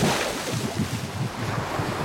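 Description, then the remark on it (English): Ocean waves crash and churn in a steady, dense wash of surf, fairly loud, with a gusty, windy roar running underneath and no voices. “The waves engulfed him, and the corpse sank to the bottom of the sea.”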